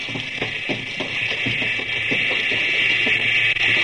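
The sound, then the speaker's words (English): A submarine's electric motor hums steadily, a loud, unbroken high-pitched whine over a low drone, with faint rhythmic pulsing beneath it and no voices. “That humming noise, you hear it? Yeah, that's a sub's electric motor.”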